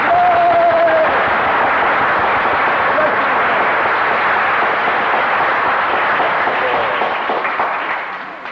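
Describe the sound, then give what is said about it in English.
An audience claps steadily together, a dense and loud wash of applause that holds for several seconds before starting to fade near the end. “Give him a clap.”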